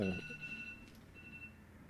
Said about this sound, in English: The alarm just went twice because I snoozed it, fam. Why are you snoozing? I didn't press stop.